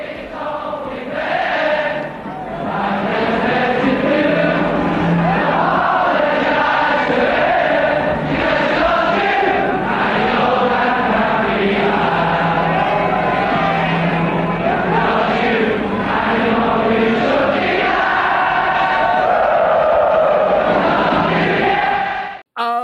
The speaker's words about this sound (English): The music the crowd sings is the music that Liverpool has sent echoing around the world.